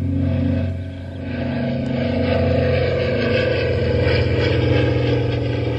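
A small signal plane trailing a streamer flies over on a windless day, its engine droning loudly and steadily, a rough, buzzing hum with layered low tones that dips briefly and then holds strong throughout, with no voices.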